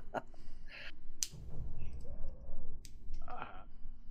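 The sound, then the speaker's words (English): A player drops all their dice to roll damage for a mace hit in a tabletop role-playing game. The dice clatter across the table in a few sharp clicking bursts spread over several seconds, with a low murmur of background voices underneath. “I'm dropping all my dice.”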